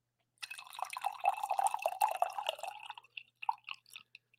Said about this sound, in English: I do have I have one more coffee pour left. It's going to be a weak coffee pour. There's not much in here, but this is for you guys.